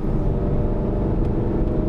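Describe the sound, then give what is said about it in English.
A sports car engine roars loudly in a steady, continuous drone as the car accelerates on a race track down the very quick right-hand corner at Ford Water, with a little dab of the brakes, its deep rumble holding level throughout with no voices over it. “Now we're coming down to Ford Water, so accelerating down this very quick right-hand corner, just a little dab of the brakes and then through the corner.”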